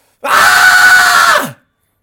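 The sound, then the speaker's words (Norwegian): A person recreates a primal scream: a single loud, sustained scream lasting over a second, harsh and strained, delivered alone before cutting off abruptly. “men bare, hvis du går litt vekk fra mikrofonen, kan du bare gjenskape det primalskriket?”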